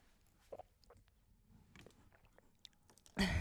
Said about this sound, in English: took a 1 gallon jug and is trying to wrap it around the mic to take a sip instead of moving the mic.